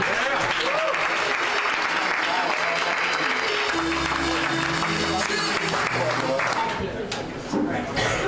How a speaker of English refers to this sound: Round of applause for Rooster Teeth Feathers.